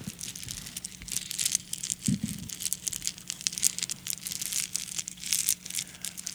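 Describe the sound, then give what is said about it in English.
Rounded river rocks are pulled from a bag in a pocket, with continuous crinkly rustling of the bag and a brief low thump partway through, over a steady low hum. No one speaks. “I don't know why I put all these rocks in my pocket this morning, but I'm almost done.”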